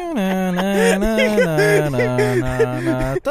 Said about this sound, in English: That's some weird hold music.